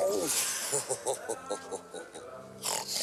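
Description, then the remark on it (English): A man imitates a pig, making a quick run of rhythmic oinking grunts, ending with a louder, breathier snort. “And if I was a prostitute and someone oinked at me, I don't care how much he's paying, I'm leaving.”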